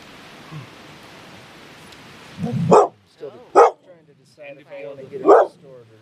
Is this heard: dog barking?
yes